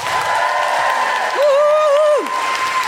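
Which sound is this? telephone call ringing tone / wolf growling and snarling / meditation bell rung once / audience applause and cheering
audience applause and cheering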